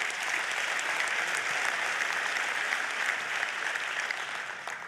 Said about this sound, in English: You can clap for that.